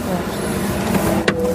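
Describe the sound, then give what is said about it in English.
A single quick mechanical clunk of car door locks engaging as an elbow presses the lock control, heard from inside a vehicle over a steady low engine hum. “Just pop your elbow on there. You've locked the doors.”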